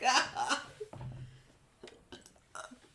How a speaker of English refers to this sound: I did that, and then I got a really dry throat, so I need to drink some more water. Now I got the hiccups. What the fuck was that?